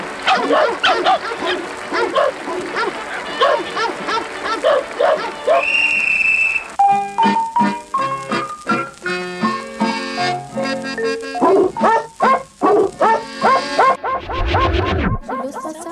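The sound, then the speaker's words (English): Several dogs in a circus singing-dog act bark and yip, pitched to different notes, one after another in a bouncy melodic pattern. Together they form a recognizable tune, loud, with a burst of rapid barking near the end. “this circus now has the honor of presenting to you the unique and world-famous attraction, Don Charlie's Singing Dogs”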